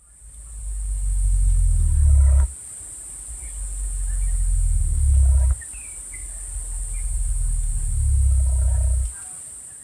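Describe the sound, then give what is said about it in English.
A cassowary gives three deep, loud rumbling calls of around 23 hertz, among the lowest-frequency sounds made by birds, each swelling for about two seconds before cutting off, with faint bird chirps and a steady high insect hiss behind them. “So it's possibly related to the sound that they make, which is like a deep, very loud rumbling.”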